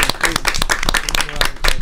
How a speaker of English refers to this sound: Hold on. It's a round of applause.